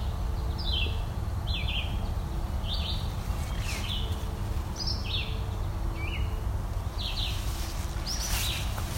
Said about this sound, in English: It's also American goldfinch singing, calling.